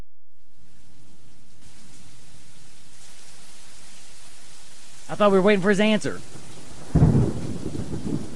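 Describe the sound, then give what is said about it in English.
A thunderstorm sound effect: steady rain hiss with low, rolling thunder rumbling underneath, a man briefly speaking over it, then a louder rumble near the end. “I need the lightning in the mind going.”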